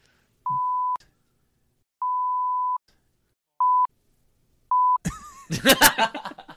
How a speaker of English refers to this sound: Well, that was a funny one, but guess what that's going to translate as? Four big, long beeps in a row. So, no one's going to know.